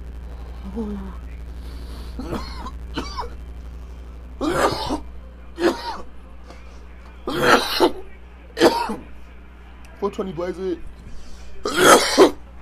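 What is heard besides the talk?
coughing and throat clearing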